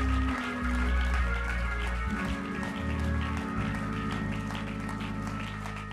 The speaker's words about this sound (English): One more time, would you clap your hands unto him?